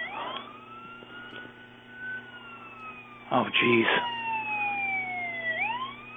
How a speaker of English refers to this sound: Wait, what is that? Oh, no. I'm hearing a siren.